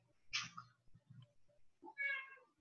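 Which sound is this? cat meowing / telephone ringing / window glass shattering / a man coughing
cat meowing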